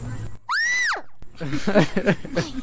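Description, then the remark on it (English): A young boy mimics a fire truck siren with a single loud, high wail that swoops up and then falls away, followed by someone talking. “What's the noise the fire truck makes? How's the sound siren go?”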